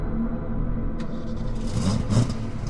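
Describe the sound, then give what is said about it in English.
A car engine rumbles steadily, then roars louder with a gritty, revving surge near the end as the car drives away, with no voices present. “I heard an engine roar, then the squeal of tires fading into the distance.”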